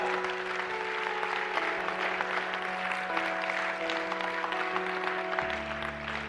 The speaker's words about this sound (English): How many of you are thankful for the forgiveness of God in your life? Come on and give Him a hand clap.